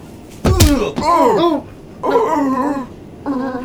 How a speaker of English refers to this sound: Don't smash the doors, please.